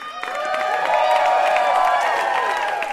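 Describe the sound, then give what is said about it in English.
A studio audience on the quiz show Ask Me Another bursts into cheers and whoops over steady applause for the winner, the crowd noise rising quickly and holding loud for a few seconds. “And the crowd goes wild for our winner,”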